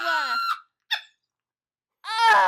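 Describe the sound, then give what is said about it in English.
A door creaks open in three squeaky, high-pitched bursts: a drawn-out whine, a quick short squeal, then after a pause a louder, longer creak, clear with no talking, as a man opens it and people walk in. “He opened the door and we walked in.”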